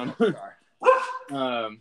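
Dogs bark close by: two quick, sharp barks, a brief pause, then a longer, drawn-out bark that trails into a whine-like howl. No one is talking.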